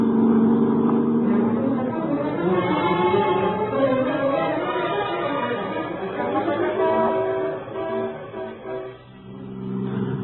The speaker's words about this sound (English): I kept my foot heavy on the gas pedal.